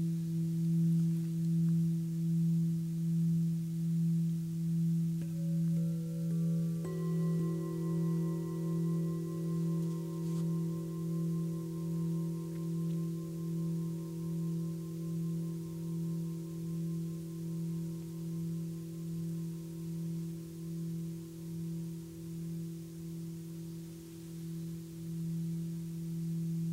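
Tibetan singing bowls ring in long, overlapping tones, a low hum wavering steadily beneath brighter sustained pitches that enter partway through and linger. No one speaks.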